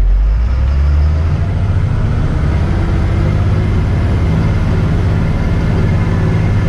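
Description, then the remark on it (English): A heavy truck engine labors in first gear climbing a big hill on the way up to a drill rig at a well, with a steady, deep rumble and constant drone, loud and continuous throughout without any talking. “We got a big hill we're getting ready to go up, so ride along with us as we get on up here to this drill rig.”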